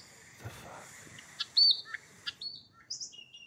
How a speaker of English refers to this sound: Cue bird noises. Yeah, there we go.